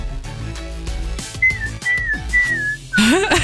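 Someone whistles over a phone line into a live broadcast, a few sustained wavering notes that end in a quick rising swoop. The whistling sounds thin above a busy, muffled background, with no talking.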